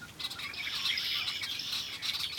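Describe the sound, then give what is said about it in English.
A large flock of red-winged blackbirds, flown up from feeding on the ground into a nearby tree, calls all at once in wind, a dense, continuous wash of overlapping chirps and trills, fairly loud and steady throughout with no voices. “That's when I noticed a large flock of red-winged blackbirds feeding on the ground. As I approached, they flew to a nearby tree and literally exploded with sound.”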